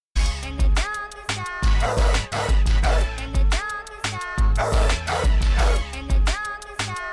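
Repeated dog barks come in rhythmic bursts over a heavy, thumping low beat, loud, with short gaps between the pulses and no one talking.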